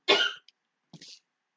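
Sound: cough away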